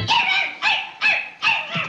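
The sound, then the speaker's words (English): A human voice, June Foray's, imitates a dog barking as Little Ricky's dog in I Love Lucy: four loud, yappy barks in quick, slightly uneven succession, with nothing else in the background. “She was the voice of Little Ricky's dog barking in I Love Lucy.”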